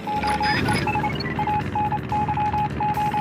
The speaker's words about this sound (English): These sounds are actually Morse code. A total of three messages can be interpreted, translating to, "Morse code takes forever."